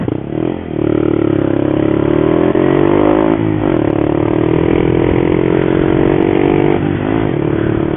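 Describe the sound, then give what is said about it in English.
A small motorcycle fitted with a massive Yoshi exhaust revs steadily and loudly for several seconds, its buzzing pitch rising and falling between a few short throttle blips, with no talking over it. “She's not crazy powerful, but man, what she lacks in the power, she well makes up for in nimbleness and agility.”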